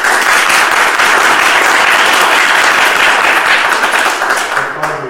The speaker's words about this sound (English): I'd like to give them a warm round of applause.